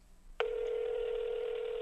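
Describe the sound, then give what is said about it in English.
A telephone tone cuts in abruptly as a call is placed and holds steady and fairly loud to the end, a continuous electronic hum rather than a run of separate beeps, with no voices. “We're hitting the phone.”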